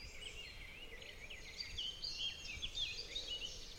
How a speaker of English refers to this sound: But I have to say, it is now an absolutely glorious day. There is not a cloud in the sky, apart from a distant single vapour trail from a passing jet, but it's still all stillness and birdsong.